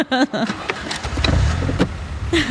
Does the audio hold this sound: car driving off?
yes